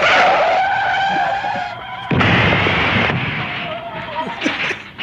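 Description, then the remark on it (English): A car crash sound effect: a car skids with a loud, screeching tire squeal for about two seconds, then slams into something in a sudden crash, followed by a burst of crunching, rattling debris. “That was a car crash.”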